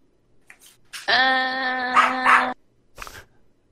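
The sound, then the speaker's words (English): A dog barks in one loud, drawn-out, almost howling call lasting over a second, with a few soft short sounds before and after and no one talking. “Apparently your dog has an answer.”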